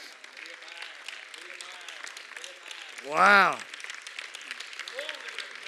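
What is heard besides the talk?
audience clapping hands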